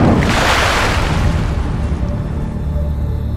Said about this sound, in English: I think as soon as there is a sound of someone coming out of the water, like Gable obviously like pulls themselves up out of the water.